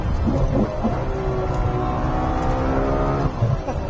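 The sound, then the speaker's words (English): The F140 GA V12 engine of a Ferrari 812 fitted with gas particulate filters blips sharply through several quick rev-matched downshifts as the car comes up to a corner, its loud, smooth wail rising and falling in short steps, dominating throughout. “One of the great motoring experiences has to be multiple downshifts in an 812 with this engine.”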